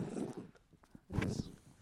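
A pet dog that is not enjoying himself growls low and rough, then lets out a louder, harsher burst like a bark, with no talking over it.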